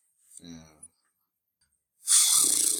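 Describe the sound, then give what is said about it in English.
A man imitates a horse with his voice: a short, wavering voiced whinny, a second of silence, then a loud, breathy, fluttering snort that runs to the end. “With the horse noise you just made?”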